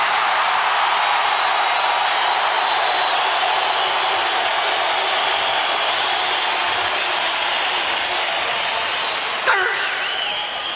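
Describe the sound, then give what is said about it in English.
A large arena crowd at Madison Square Garden in New York cheers in a loud, steady roar that barely dips for the full length, with a brief sharp burst standing out near the end. “What a fucking crowd, eh?”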